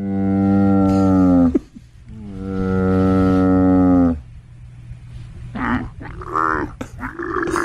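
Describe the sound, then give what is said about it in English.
Hump the Wonder Camel, being inducted by Golden Eagle Sports, lets out two long, deep, droning groans one after the other, followed by a string of shorter, rougher gurgling bellows at a lower volume. “Hump the Wonder Camel will be inducted as well. And we had a chance to ask him his reaction, and here's what he had to say.”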